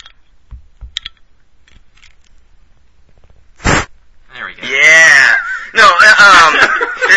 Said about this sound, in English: We're cracking up some beers. Straw legs, you gotta do this. Get a good sound effect on this one.